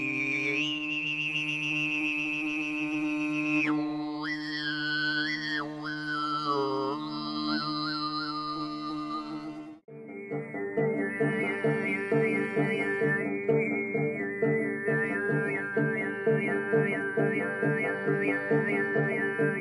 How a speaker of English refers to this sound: You know that music that they sing with their back throat, but also whistle nasally through it. I'll play some right now just to give you an...